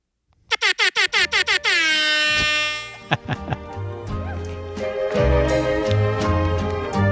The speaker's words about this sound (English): Yeah. You can't follow the air horn.